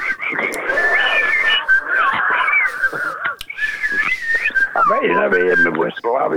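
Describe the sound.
Someone whistles a familiar, bouncy song tune up close, the melody wavering and sliding through the phrases, with bursts of talk and laughter mixed in around it.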